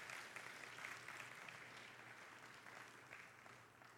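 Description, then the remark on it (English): A church audience claps steadily for its workers, a dense wash of applause that holds fairly even and then thins slightly toward the end, with no one speaking over it. “Give them a good round of applause.”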